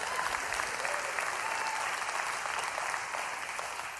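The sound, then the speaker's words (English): An audience breaks into steady applause, a dense, even crackle of many hands clapping that holds for about four seconds and tapers off slightly at the end. “You can clap to that too.”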